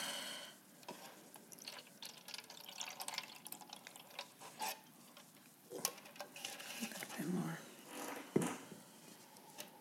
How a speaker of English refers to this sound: Any more? Yeah. Pour the Jesus juice.